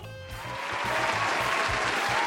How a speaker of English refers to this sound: And everybody is applauding wildly, and all the people said amen.